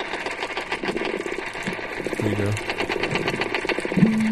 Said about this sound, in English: That's a dolphin. Under the tapping sound coming from the perch, you can faintly hear what sounds like that creaking door or something like a fishing rod being reeled in.